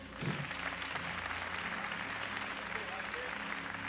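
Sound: audience hand clapping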